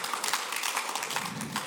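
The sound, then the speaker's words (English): A church audience gives God a hand clap during a service, a dense, steady burst of applause, many overlapping claps forming a bright crackling wash with no voices heard. “Come on, give God just a hand clap.”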